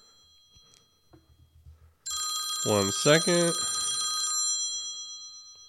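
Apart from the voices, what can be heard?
telephone ringing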